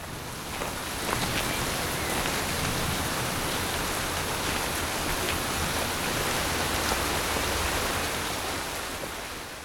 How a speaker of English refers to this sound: Everywhere, the rain splashing down.